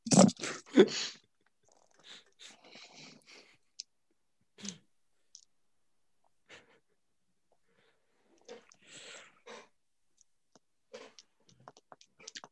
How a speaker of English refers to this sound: Imagine that's probably a lot of dice he's rolling now. only 12. 12 doubled, though. No, 12 in total.